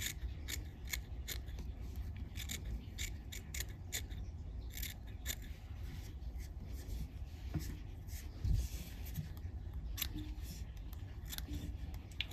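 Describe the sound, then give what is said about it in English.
Quiet snips of curved scissors trimming fly-tying material repeat in quick, uneven bursts, crisp little clicks over a faint background hum with occasional soft rustling of the material being trimmed. “I like to use curved scissors.”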